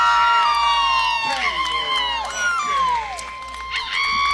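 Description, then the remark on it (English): The Taylor Hopkins cheering section at a baseball game, right by the broadcast booth: a small group of high-pitched voices cheers and shouts together, with overlapping whoops that slide up and down in pitch, loud and sustained over a low crowd murmur. “The Taylor Hopkins cheering section right here by our broadcast booth.”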